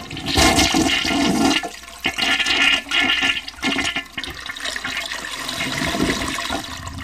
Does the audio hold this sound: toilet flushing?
yes